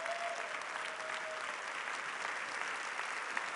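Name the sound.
audience applauding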